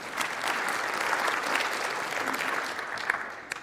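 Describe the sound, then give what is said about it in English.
An audience breaks into steady applause, a dense, even wash of many hands clapping at moderate loudness for a few seconds with no voices standing out, a few sharper claps near the end. “Yeah, we can clap for that, right?”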